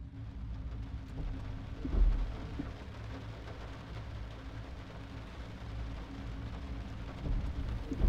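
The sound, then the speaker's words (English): Heavy, driving rain hisses steadily over a deep low rumble, with a couple of louder swells like thunder rolling in partway through and again near the end. No one speaks. “Seated in Amandi's old blue Mustang in the driving rain,”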